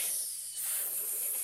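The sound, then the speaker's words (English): A voice hisses like a snake in one steady, loud, breathy hiss lasting about a second and a half, with a slight dip partway through and no speech. “I don't speak snake.”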